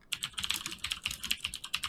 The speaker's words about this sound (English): I have a super clicky keyboard, if you can't tell. Good old mechanical keyboard. With some nice cherry blues, clickety-clack.